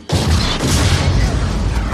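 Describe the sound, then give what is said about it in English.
A tank's cannon fires in a movie tank sequence, a sudden, loud blast erupting into a heavy explosion boom, its deep rumbling roar sustained, heard in 5.1 surround sound with no speech over it. “The movie that they demonstrated in 5.1 surround sound was this scene from Last Crusade. It was the tank sequence.”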